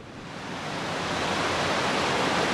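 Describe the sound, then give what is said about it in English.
Steady, dense rushing of water from the Potomac River pouring through a channel into the Army Corps of Engineers' water treatment plant, a broad continuous roar that swells slightly at the start and then holds loud, with no voices. “Tom Jacobus, the man in charge of the Army Corps' treatment facility, shows me where water from the Potomac rushes into the plant.”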